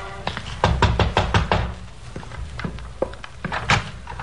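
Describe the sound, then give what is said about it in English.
Firm knocking on the wooden back door of a single-family frame house: a quick flurry of several raps, a short pause, then a few more scattered knocks. No voices. “A light showed in the rear window, so I walked around back and knocked on the door.”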